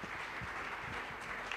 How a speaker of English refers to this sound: Clap your two hands for Jesus, church.